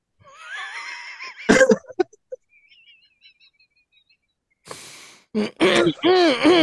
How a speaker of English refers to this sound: I'm trying to clear my throat.